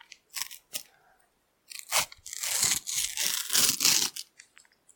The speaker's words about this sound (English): So we're going to open up packs.